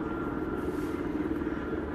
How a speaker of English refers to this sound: Yeah, there's the helicopter again. Very curious. Very curious. It's not often you have the honor of a helicopter, let alone three helicopters flying over your house.